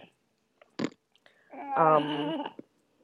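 A baby boy's short, sputtering fart bursts out onto an adult's hand, followed moments later by the infant's drawn-out, wavering vocal noise before things go quiet.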